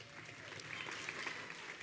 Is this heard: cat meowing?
no